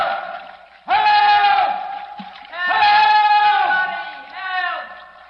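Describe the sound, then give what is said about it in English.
Two voices shout "Help!" together in three long, loud, strained bursts, each cry held and ringing with echo off the concrete walls of a pitch-black enclosure before the next begins. “All these concrete walls hold the sound in.”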